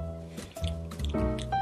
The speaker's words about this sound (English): I'm gonna go ahead and pour this out in the glass, right?